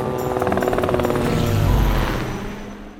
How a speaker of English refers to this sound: So Influx transmorphs back into a plasma copter. And we take off to Garbage Island as quick as possible!